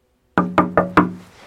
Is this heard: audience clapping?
no